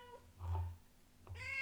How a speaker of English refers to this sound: She was stuck. Catch. It's alright. On my jumper with like one claw, and Ali couldn't get it. And she's like meowing away.